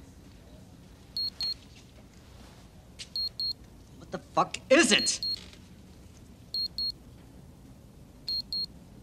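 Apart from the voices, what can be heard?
wristwatch alarm beeping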